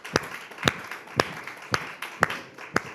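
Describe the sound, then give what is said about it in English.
Six slow, evenly spaced claps ring out from an audience at an education discussion, roughly two per second, sharp, over a low background murmur of room noise, with no talking. “Can we give that a round of applause, please?”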